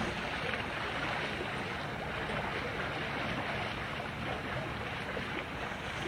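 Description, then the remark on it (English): Water splashes and churns steadily in a big Olympic-size swimming pool, a dense, continuous wash of fairly loud sound with faint bursts throughout and no voices. “This is our big pool here. It's Olympic size.”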